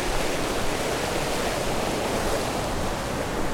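A steady, unbroken rush of flowing stream water beside a footpath, close and fairly loud, with a dense hiss that holds constant throughout and no voices.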